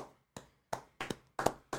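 A brief, sparse round of applause: about seven sharp hand claps in an uneven rhythm, fairly quiet, with no voices.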